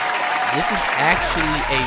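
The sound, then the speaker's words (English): A burst of steady audience applause given for Donald Trump, dense and sustained for about two seconds, with voices faintly audible beneath the clapping. “Now, I gotta give a round of applause to Donald Trump.”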